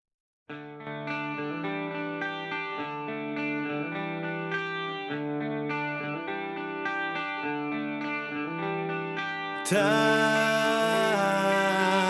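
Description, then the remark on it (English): A rock song plays with heavily effected, distorted guitar chords changing in a steady rhythm, then bursts into a brighter, louder section near the end. No one speaks over it. “I've always really kind of liked this song.”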